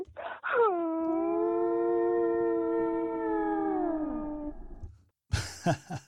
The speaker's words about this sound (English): And this is a blue whale. This is her. This is a blue whale.